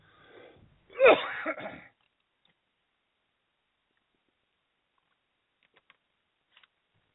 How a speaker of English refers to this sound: I have a cough due to cold.